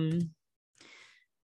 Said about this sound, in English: What are you typing?